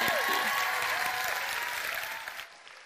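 An audience claps steadily in a dense, even wash of applause that holds for a few seconds and then tapers off. A few faint tonal sounds drift through underneath.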